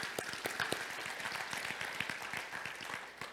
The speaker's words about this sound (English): We can clap for them, yeah.